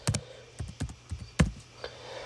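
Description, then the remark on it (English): Keys clack on a computer keyboard in a loose, uneven rhythm, about seven distinct taps spread over a couple of seconds, fairly crisp over a low steady background hum. “To review, if I can finish typing this.”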